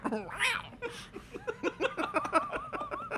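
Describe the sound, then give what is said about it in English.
A crowd makes noisy vocal sounds: a rising, meow-like squeal opens, then a quick run of giggly, cat-like yelps and laughter, moderately loud. “The crowd's just making those noises. I'm glad that the last part sounds like a cat.”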